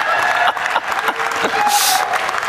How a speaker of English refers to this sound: All right, well, usually you don't get a second polite applause if you're terrible, so that's good.